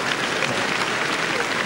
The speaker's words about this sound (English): The men, they refuse to clap. So thank you, lady, help me clap.